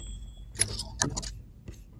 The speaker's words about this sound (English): can you give me a typewriter sound clip to get tee up the first conversation?